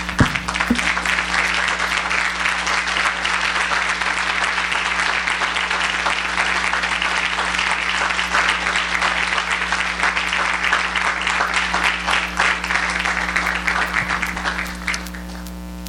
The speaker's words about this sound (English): I'm so thankful for your pastors. And I wonder if we can just stand and give them clap.